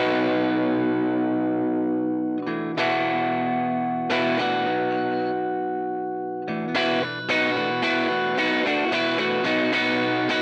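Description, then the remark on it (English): An offset electric guitar fitted with a buzz stop rings out in long sustained chords with a driven, effected tone, strummed again at intervals and then in a quicker run of repeated hits near the end. “So another way to get that additional tension is with something like the buzz stop.”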